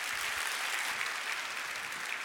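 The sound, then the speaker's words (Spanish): A crowd applauds steadily, a dense wash of many hands clapping at once with no individual claps standing out, sustained at an even, moderate level throughout. “Date un aplauso si puedes.”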